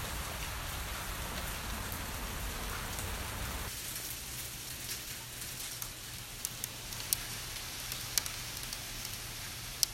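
Steady, dense rain hisses for about four seconds, then gives way to about six seconds of hail: sharper, scattered pellet impacts ticking and cracking over a thinner background wash, with no voices.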